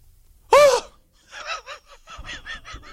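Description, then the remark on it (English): A man lets out one loud, sharp, high-pitched shriek of excitement, followed by a run of quieter, choppy vocal bursts like breathless laughter. “Okay, I shrieked.”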